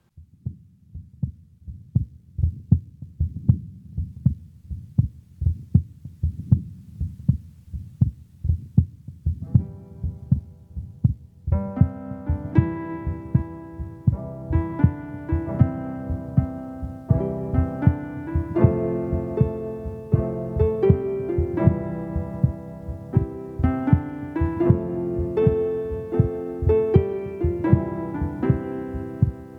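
A heartbeat recording: a steady heartbeat thumps in low, rapid pulses, alone at first; about a third of the way in, sustained melodic tones rise over the continuing beat.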